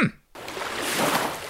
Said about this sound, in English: We want some ocean noises. Execution poor. Let's have just one more ocean noise for old time's sake.